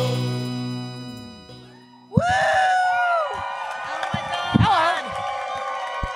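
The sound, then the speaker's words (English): A live audience at the World Pies venue in Eugene, Oregon erupts in loud cheering and screaming, with high-pitched whoops rising over the crowd noise, bursting in just as a short musical tune fades out and sustaining for several seconds. “We got a crowd tonight.”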